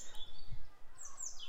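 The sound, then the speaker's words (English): A European robin sings a rapid jumble of varied, high, thin notes, quiet, with soft outdoor background noise and no one talking. “With robins, it's kind of a little bit more like a jumble of different, lots of different notes.”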